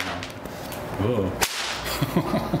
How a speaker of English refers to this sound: It's so loud. That's, it's cracking the whip. I'm not gonna do it that fast. Oh gosh. But that the whip is going faster than the speed of sound, and that's why. That's why you hear that. Sound.